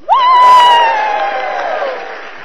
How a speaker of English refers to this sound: waved their palms, and they clapped their hands, and they cheered to welcome Jesus into Jerusalem.